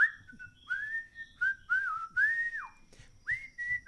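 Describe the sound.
A lively, tuneful whistle rises and falls through a string of short, bright phrases, clear over faint background rumble, with no talking, coming from someone on a cart at the northwest tip of a lake.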